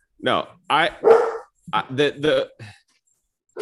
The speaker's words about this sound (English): Sorry, my dog was yelling, barking.